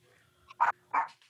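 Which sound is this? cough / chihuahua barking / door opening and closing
chihuahua barking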